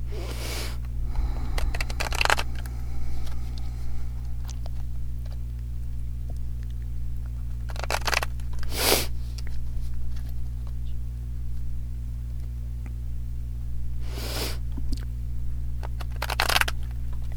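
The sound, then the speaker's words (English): Oracle cards being blessed and shuffled in short, scattered bursts of papery riffling, moderately loud, separated by quiet stretches over a steady low electrical hum, with no talking. “All right, I'm going to be quiet for a bit while I bless the cards and shuffle.”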